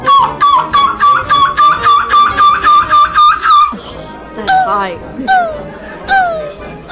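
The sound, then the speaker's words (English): A man imitates a seagull screech at a gull-screeching competition: a rapid series of loud, shrill, rhythmic cries, then several longer descending wails, alone with a little background noise. “Have a listen to the guys do their best seagull imitations and the winner from last year as well.”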